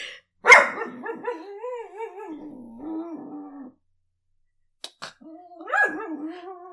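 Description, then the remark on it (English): A dog lets out a sharp bark followed by long, wavering half-growling grumbles, fairly loud, then a brief pause, a click, and another rising grumbly vocalization. “2 minutes of dog sounds.”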